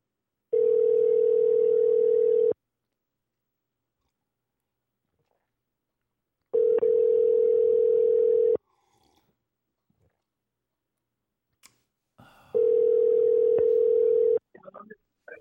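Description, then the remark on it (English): A telephone ringback tone on a call to a taxi service in New York purrs three times, each steady two-second burst followed by a pause of about four seconds, loud, with faint rustling and breathing in the gaps. “Oh, it's fucking ringing.”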